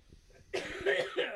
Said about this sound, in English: I got this little tickle in the back of my damn throat, and all of a sudden I start coughing again.